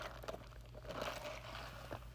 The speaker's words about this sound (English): sorry, I took a sip of my coffee.